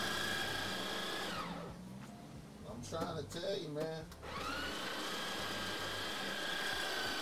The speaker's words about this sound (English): Ain't nothing like espresso machine at the crib. Oh, man. Freshly ground coffee. Freshly ground coffee, man.